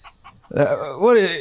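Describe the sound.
A person imitates a chicken's clucking with a short burst of warbling, squawky vocal noises, preceded by a couple of faint soft sounds, fairly loud.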